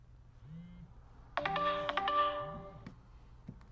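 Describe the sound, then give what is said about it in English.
An electronic alarm rings out suddenly, a loud, bright burst of stacked tones lasting about a second and a half before cutting off, with faint low murmuring around it. “But realistically speaking, sorry about the alarm there.”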